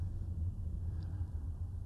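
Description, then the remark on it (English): A steady low rumble of road noise from a moving car, continuous and even throughout, with no voices and no distinct events. “lost thoughts, and incomplete thoughts, self-doubt, lots of ums, and car noises.”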